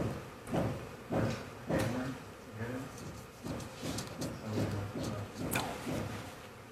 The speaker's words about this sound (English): Stop the hammering. Stop the hammering out there. Who's got a hammer? Where is it?